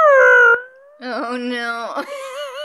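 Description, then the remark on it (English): A voice imitates a body squeaking across a Marley dance floor as it is pulled off stage into the wings: a short, loud falling squeal, a brief gap, then a longer wavering high-pitched squeak with no talk around it. “As I pulled him, I just made that squeak sound as I pulled him off into the wings.”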